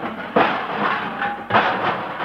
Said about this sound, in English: Hey, your door fell off. Doggone it, I knew that chewing gum wouldn't hold.